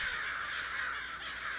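A large black crow caws in a harsh, raspy, drawn-out call that holds steady for a moment, clear, as it swoops directly overhead above a field of Christmas trees, with no talking around it.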